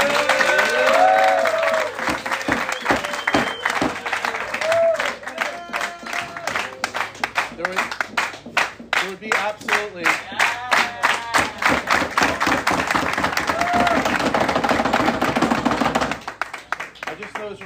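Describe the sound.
An audience bursts into loud, sustained applause, a dense rapid patter of many hands clapping for about fifteen seconds, with voices calling out underneath before it tapers off abruptly at the end.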